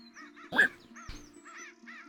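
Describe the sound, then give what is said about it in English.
A voice imitates a bird with one loud, harsh crow-like caw, surrounded by several softer, scratchy squawks over a steady low background hum. “Oh, you make a good bird and it's unsettling.”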